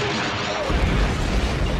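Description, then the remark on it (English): A turbo laser cannon blast on a mess hall building gives way to a loud explosion as it is blown into pieces, a deep rumbling roar with crackling debris, sparks and metal that fills the rest of the moment, with no voices. “And so the turbo laser blasts away at the mess hall.”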